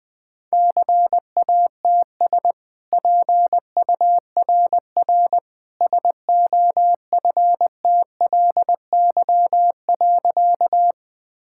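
Morse code sent at about 20 words per minute: a single steady mid-pitched tone keyed into quick dots and longer dashes, grouped into letters and words with short silent gaps, no voices.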